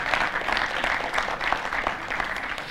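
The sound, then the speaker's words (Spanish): A church audience at the Icono church's Easter Sunday service applauds the music steadily, a dense wash of many hands clapping at a fairly even level for a few seconds, with no one speaking over it. “Se puede aplaudir por estas cosas, ¿ok?”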